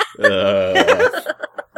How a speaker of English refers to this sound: By the way, I don't have hiccups, I just keep gagging.